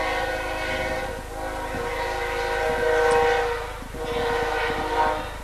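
A train horn blares in long, sustained harmonic blasts while a train on the BNSF Railroad rumbles past Duncan Field in Hastings, its low mechanical rumble and faint rhythmic clatter running underneath throughout.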